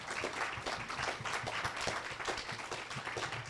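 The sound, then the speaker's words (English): A crowd breaks into sustained applause for a panel after a conversation, many hands clapping in a dense, steady wash that holds at an even level throughout, with no voices standing out. “Why don't we have a big round of applause for our panel?”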